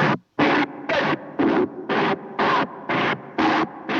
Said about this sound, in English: The screeches are not continuous. It goes from a fully saturated white noise to silence 10 or 11 times, right?